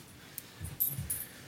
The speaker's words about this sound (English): Nixon! Hey! Come on! What's wrong, Pope? You're barking at the neighbor dogs. Lay down.